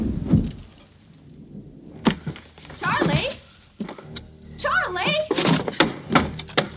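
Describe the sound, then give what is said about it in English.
A stuck door being forced: heavy thuds and rattling jolts come in uneven bursts, fairly loud, with strained voices sounding between the shoves. “my door is stuck.”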